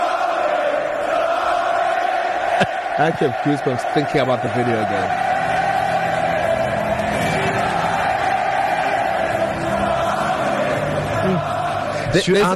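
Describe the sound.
A huge stadium crowd sings together in a dense, sustained roar of voices that holds steady throughout, with a person speaking over it partway through.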